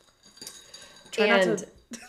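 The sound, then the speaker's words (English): Faint, irregular clinks of a spoon against a glass as a mixed drink of vodka water with Crystal Light Wild Strawberry is stirred, a few light taps, then a brief louder burst of voice over them before the clinking resumes. “Try not to stir it too much. That making a lot of noise.”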